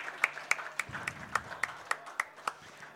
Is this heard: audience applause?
yes